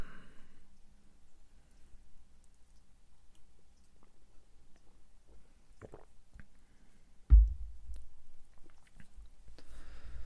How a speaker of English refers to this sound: So let's have another quick sip.